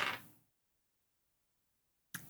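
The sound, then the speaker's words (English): A d20 die clatters briefly across a hard surface, a quick rattling burst that fades within half a second. Near silence follows, then another short noisy burst at the very end. “It's roll a d20.”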